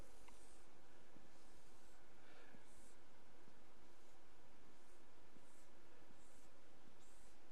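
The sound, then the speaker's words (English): A pen scratches across paper in short, intermittent strokes, drawing a pie chart of eight skills. The sound is faint over a steady low hiss, with no one speaking. “This is not one of those miraculous heavenly pens.”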